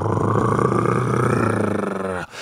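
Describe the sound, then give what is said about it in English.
A loud, rumbling purr swelling into a roar-like growl, voiced by a person imitating a tomcat, held steadily for about two seconds before stopping abruptly. “Now the tomcat's purr was a positive roar.”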